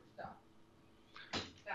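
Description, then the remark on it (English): A dog knocking things over: a faint early bump, then a sharper clattering knock followed quickly by a short rattle, moderately loud over a low steady background hum. “Dog's knocking stuff over. Sorry if you heard that.”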